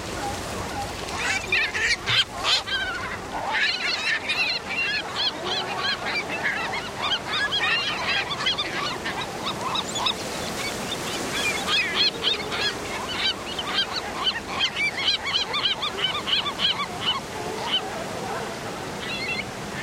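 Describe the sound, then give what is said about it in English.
Steady wash of surf on the rocky shoreline of the Northern California coast under a dense, overlapping chorus of harsh seabird cries and honking, barking calls from marine mammals, loud, with no one speaking. “We leave you this week on the coast of Northern California, where ocean waves mix with the cries of seabirds and marine mammals that inhabit the rocky shoreline.”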